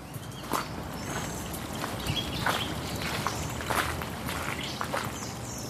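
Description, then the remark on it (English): Steady footsteps crunch along at an even walking pace over a constant wash of flowing stream water, with no voices, recorded while walking from the city up to the town belt. “So the sounds change from cars and building construction noises to bird song and stream sounds.”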